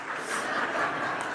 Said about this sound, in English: Yeah, you clap now.